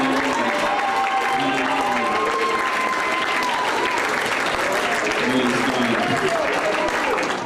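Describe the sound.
An audience claps steadily and loudly throughout, with voices shouting and calling out over the dense applause.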